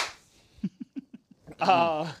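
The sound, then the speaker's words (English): About five short, dull hand claps land in a steady, even rhythm, a person giving himself a slow clap, then a voice starts speaking right after them. “Slow clap, too. Slow clap.”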